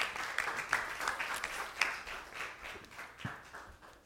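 A church audience applauds steadily to welcome a pastor to the stage, many hands clapping in a dense, continuous patter with no voices, holding at a fairly even level for several seconds.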